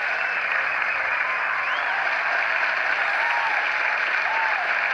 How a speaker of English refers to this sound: Oh, the audience loved that one. Just let them clap themselves out.